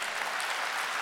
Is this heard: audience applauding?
yes